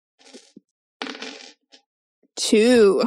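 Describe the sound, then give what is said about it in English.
Dice clatter and rattle across a table in two short bursts during a tabletop role-playing game, a few quick clicks between them, followed by a brief voice right at the end. “I think Decker needs some different dice here.”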